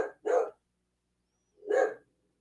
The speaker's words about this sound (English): Unfortunately, the dog is barking. He usually does that with a cat.